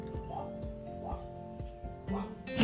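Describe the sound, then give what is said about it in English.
A female black Labrador dog barks in a steady series of about six sharp, evenly spaced barks, moderately loud, with a faint voice and a low hum in the background. “And also you can definitely hear our dog. We have a black lab.”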